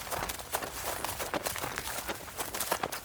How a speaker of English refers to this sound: So I'm going to turn off all my flashlights, then run into the middle of the garden.